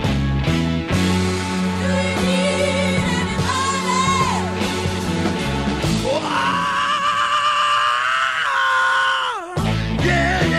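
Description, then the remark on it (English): A rock singer lets out a long, loud, sustained scream over a full band, the strained cry rising and holding high for several seconds before the music cuts back in. “These are the 10 best screams in rock.”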